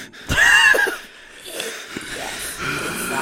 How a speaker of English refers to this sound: Yeah. Heavy breathing.